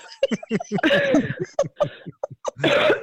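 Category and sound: human body sound, cough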